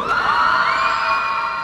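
A loud, boisterous crowd cheers and whoops at a law school graduation hooding ceremony, a dense wall of high-pitched shouts and yells that holds steady without pause.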